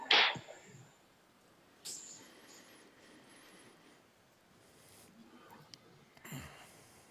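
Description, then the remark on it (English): A group doing a double breathing with tension exercise during a meditation service, with sharp, noisy breaths: a strong burst at the start, then fainter ones spaced a few seconds apart, otherwise quiet, with no talking. “Double breathing with tension.”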